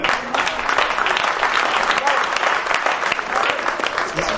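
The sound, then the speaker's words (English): A standing audience claps their hands in a loud, dense burst of applause, many overlapping claps forming a steady, sustained wash of sound with no pauses. “Hand claps standing.”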